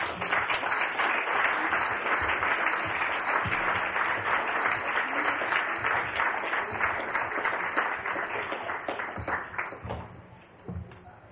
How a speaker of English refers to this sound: I want to thank all the readers. Will the readers join me, please, and take another hand of applause? Come on.